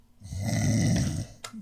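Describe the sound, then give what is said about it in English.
One long, loud snore, a rattling low drawn-out breath lasting about a second, followed by a brief sharp intake of air. Likely a person imitating a snore. “snores loudly.”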